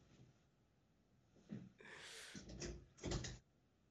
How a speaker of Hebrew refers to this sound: אני פותח דלת, אני איתך. אין בעיה.